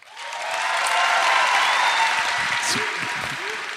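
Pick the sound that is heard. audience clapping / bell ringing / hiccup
audience clapping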